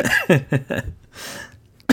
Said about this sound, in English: What? Oh my god, I'm dying. Solidarity cough.